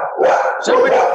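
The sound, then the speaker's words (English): A dog barks twice in quick succession at someone who came to the door, loud, with sharp, slightly strained yelps rising above a faint voice in the background. “oh yeah, the dog doesn't agree with any of this.”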